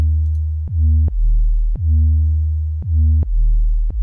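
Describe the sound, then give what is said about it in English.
A deep, smooth sine-wave bass from an Operator synth, with a little pitch enveloping, plays a short riff of about six notes, each beginning with a quick downward pitch swoop. It is loud, with no voices or other instruments. “This is an operator, sine wave, and a little bit of pitch enveloping, and I think that's really it.”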